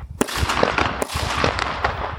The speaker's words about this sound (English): So we've got some harmless kids that are blowing off fireworks. So apologies if you hear that background noise. It's not gunshots.